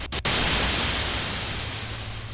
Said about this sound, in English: Thus, the musician himself constructs or synthesizes the desired white sound noise.